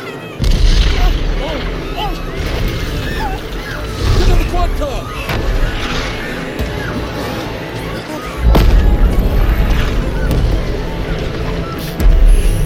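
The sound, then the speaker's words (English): Deep, heavy explosions of meteor impacts boom out in a few loud bursts over a constant low rumble, with a voice shouting briefly between the blasts. “Some kind of meteor.”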